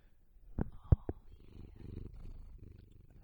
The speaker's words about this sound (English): We have a new cat here. She purrs real loud. Hold on, let me get her going.